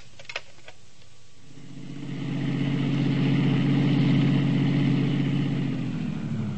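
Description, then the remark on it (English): A few small clicks, then a car engine rumbles, holding a steady mid-pitched hum before easing down as the driver parks the car and it comes to a stop. “I parked my car, went on upstairs, opened the door”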